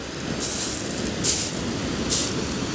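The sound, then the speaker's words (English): Sea waves breaking on a shore, with three hissing surges of foam washing in over a steady low rumble of surf, about one every second. No voices. “Maybe I'll just get closer to the waves.”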